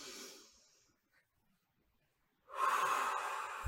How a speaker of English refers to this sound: So with that, take a nice deep breath in, as deep as you can manage right now.